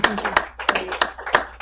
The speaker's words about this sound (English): And well, actually, let's just start by giving her a round of applause for coming.